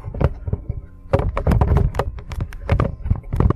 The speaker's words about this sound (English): Did you just knock the microphone over